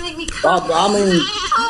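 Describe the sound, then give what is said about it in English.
A goat bleats once in a long, quavering cry with a wavering pitch, loud, lasting about a second after a brief soft lead-in. “I'm talking about this goat.”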